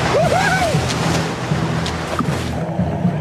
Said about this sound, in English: Okay, guys, this is going to be a tough swim through these strong ocean waves and rocks to get to the island. Can you do it?